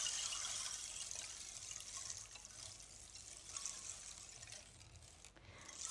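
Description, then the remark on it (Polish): A wooden disc filled with small pebbles and seeds is slowly turned, the pebbles and seeds pouring in a steady, soft hiss that imitates a gently trickling stream, continuous for several seconds with no voices. “Można też zrobić mały strumyczek.”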